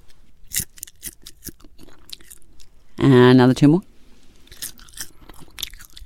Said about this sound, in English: For the love of humanity, I'm going to take my first bite of a larva. Yep. Cricket larva. No, it's a soldier larva. It's a soldier larva. Yeah. Oh, I see. Yeah. So I'm not eating a cricket. Okay, here we go. Right, here we go. Listen to this.